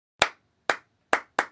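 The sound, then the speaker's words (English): Four crisp hand claps with no voices, clapping back the syllables of the word 'Philharmonic' in a clap-along orchestra game: three evenly spaced claps, then a quicker final one close behind the third. “All you have to do to play along is just clap back each phrase that I say.”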